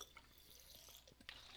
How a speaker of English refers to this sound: Got to take water because that's as authentic as we get here at the Reality Check podcast.